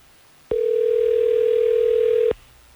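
A single steady telephone ringback tone sounds loud and clear for about two seconds with no talking, as the Hot 101.5 radio show places an outgoing call to a listener.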